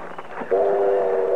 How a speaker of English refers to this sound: Oh, come on, Chester. The train's pulling in. Let's get on it and get out of here.